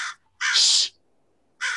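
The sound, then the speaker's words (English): A crow caws loudly right over the speaker's shoulder in Los Angeles, harsh raspy calls in a quick series of three, the middle one longest, with quiet gaps between and no voices. “Oh my God, this crow is going crazy.”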